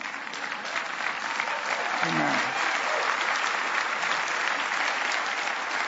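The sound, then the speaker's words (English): An audience applauds with dense, steady clapping that holds at an even loudness for about six seconds, while a single voice briefly speaks over the noise. “It's okay, you can clap.”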